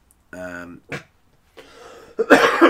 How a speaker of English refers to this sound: I thought you were laughing, not you were sneezing. It was kind of a cough.